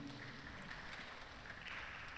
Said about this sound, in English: And that was a really wimpy clap. And it's okay.